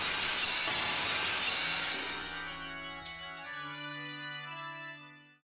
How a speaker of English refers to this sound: You smash the mirror into 1,000 glimmering, shining pieces! In sheer disgust and horror.